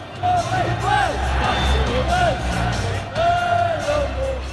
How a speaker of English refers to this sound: Okay, so we're now at the ground and it's pre-match. We are about 10 minutes from kick-off. As you can hear, the crowd are pretty vocal.